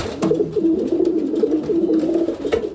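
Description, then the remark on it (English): Racing pigeons coo steadily on a roof after returning home from a race, a continuous low warbling murmur of several birds overlapping, with a couple of soft flutters or taps, and no one speaking. “The other 2 perch on the roof. And that's it. The moment of exhilaration. It's subtle. Yes, in fact, the racers still have no idea who won, but it's a triumph for the pigeons and the racers.”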